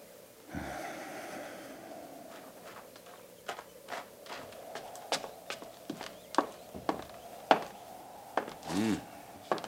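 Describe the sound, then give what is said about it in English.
Horses shifting about, their hooves knocking in irregular clip-clops over a low background rumble, with a snort or breathy huff now and then and no talking. “hobble them horses and get up.”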